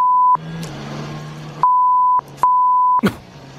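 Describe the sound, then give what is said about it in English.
Three loud, steady censor bleeps, each lasting about half a second, cut out swearing in a stretch of angry-sounding voice, with short bursts of speech heard between the tones. “More so when it's on tally and they have to beep it out and you just get an understanding of how mad they were.”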